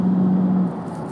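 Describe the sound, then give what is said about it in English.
Steady engine and road noise from a car driving in traffic with many big trucks, with a low droning hum that fades slightly after a moment; continuous, fairly loud, no voices. “All want to speed and act like they're dodging cars.”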